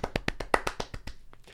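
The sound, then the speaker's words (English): A short, quick burst of hand clapping as a round of applause, about eight or nine sharp claps in an even, rapid rhythm, fairly loud before trailing off into a couple of softer claps. “Round of applause for us”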